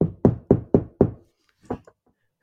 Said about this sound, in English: Oh, he's even got a knocking soundboard. Oh, yeah, I got it all, baby. I got it all.